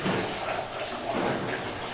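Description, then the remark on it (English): Water pours steadily into wine must while making wine, a continuous splashing rush like a tap filling a vessel, with no voices. “Yeah, so this might be the first time you ever made wine to add water to something.”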